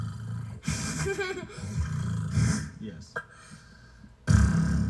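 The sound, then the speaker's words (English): A person imitates a cat's purr with a low, rumbling, snorting voice in a few uneven bursts, broken by a brief spoken word and ending in a louder rumble. “But do they do? They purr.”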